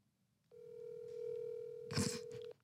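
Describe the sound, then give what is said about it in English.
A phone rings out while a call to someone's mother is being placed: one steady electronic ringback tone held for about two seconds, with a brief rustling bump near its end and no talking. “Do you really want me to call her right yes, now?”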